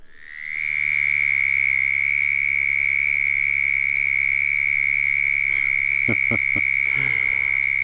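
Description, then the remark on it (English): A southern toad (Bufo terrestris) gives a steady, high-pitched buzzing trill, made by air forced back and forth over its vocal cords about 75 times per second. The loud trill holds unbroken for several seconds, with a few faint clicks and a low hum underneath and no voices. “the air is rapidly forced back and forth over the vocal cords at approximately 75 times per second to produce a high-pitched trill of the southern toad, Bufo terrestris, for example.”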